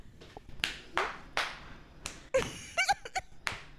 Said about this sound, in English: is slapping his own ass and just rocking out right now.